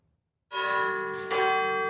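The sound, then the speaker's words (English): Large church bells at the National Cathedral in Washington ring out loudly after a brief silence, a second strike landing over the first so the rich, sustained tones swell and linger with no voices present. “The bells at the National Cathedral in Washington will no doubt be around for a very long time.”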